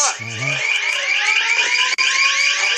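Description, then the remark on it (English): Loud, high-pitched sirens wail continuously, their layered tones wavering slightly throughout, with a brief low voice at the very start and a short cut in the sound near the end. “Here go your sirens now.”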